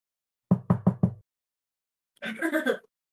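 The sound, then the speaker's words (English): Four quick, evenly spaced knocks on wood, fairly loud, followed after a short pause by a brief bit of someone talking. “I'm just going to knock on some wood, but that is the goal.”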